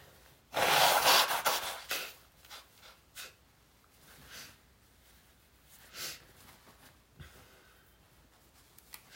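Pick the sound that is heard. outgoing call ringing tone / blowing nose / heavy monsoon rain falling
blowing nose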